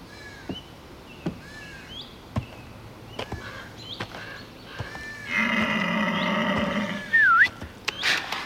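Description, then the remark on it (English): A deer calls with one drawn-out, buzzy bleat lasting a second or two, set against scattered bird chirps and sharp clicking sounds in an otherwise quiet outdoor setting. “Wait, is that a deer?”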